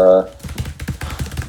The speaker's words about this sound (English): I am furiously typing.